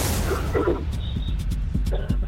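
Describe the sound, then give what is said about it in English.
A single sharp, breathy sneeze bursts out at the start and fades quickly, followed by low background rumble and a few soft knocks. “Bless you.”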